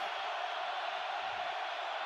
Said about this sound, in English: Crowd has come alive down here on field level